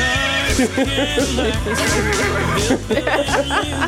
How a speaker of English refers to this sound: You got a little horse sound effect. To go along with this country sounding ass fucking song that you're playing.